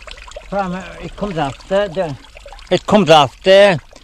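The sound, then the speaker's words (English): Mountain stream water, running off the eastern side of a high cliff, pours steadily into a bucket used to fetch water for a house with no running water, a soft continuous splashing beneath a man's voice speaking in short phrases. “It comes off the eastern side of the high cliff there up, and she's coming all along, down away, down into this bucket, and there now in August, September last, in the fine weather, this stream was completely dry”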